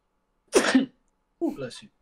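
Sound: sneeze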